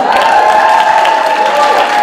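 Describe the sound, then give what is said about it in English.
A crowd cheers and claps loudly and steadily for about two seconds, a dense wash of voices and applause with sustained high-pitched whoops, answering a speaker who asks who knows what thimerosal is and to make some noise. “And the way we let it go, who knows what thimerosal is? Make some noise.”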